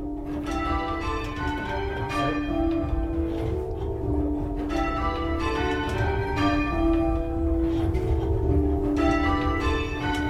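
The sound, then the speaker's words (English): Church bells of St. James's near Seacroft Green peal continuously in a steady, overlapping rhythm as bell ringers practise on a set of six bells, each strike ringing out with rich metallic overtones, loud, with no voices. “We're going to now hear from the bell ringers of St. James”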